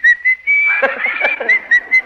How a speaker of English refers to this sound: Yes, sirree. You really puckered up there and gave us the old whistle, didn't you?